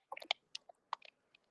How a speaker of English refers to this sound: Okay, do you still hear the clatter? Yes, I do. It sounds like somebody typing.